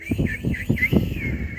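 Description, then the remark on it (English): A shrill, warbling whistle signalling the start of a race holds for over a second, its pitch wavering up and down, with soft low thumps beneath it. “Blackbird whistled again.”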